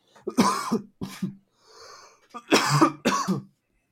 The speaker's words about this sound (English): No God damn, I don't know why I'm coughing so much today.